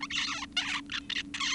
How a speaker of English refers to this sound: Here's a male zebra finch's song as it goes from a wee little bird to an adult. So this is an adolescent.